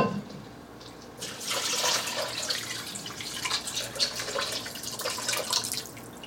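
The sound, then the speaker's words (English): Water is poured steadily into a cooking pot of pasta, a continuous splashing rush that starts after a brief quiet moment and keeps going with slight gurgling fluctuations, with no voices. “Grown-ups, you can help pour the water in if it's too heavy for your young chefs so you don't spill.”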